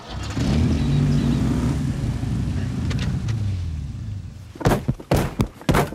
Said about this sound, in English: Have you ever gotten really angry in a parked car and just like, God, like yelled as loud as you can and like slammed your hand down on the steering wheel? Yeah. Yeah, I hit the steering wheel a lot.